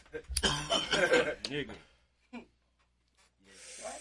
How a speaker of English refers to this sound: I think you're the only one who's coughing. Yeah, I think I am. And I hit a little deep there.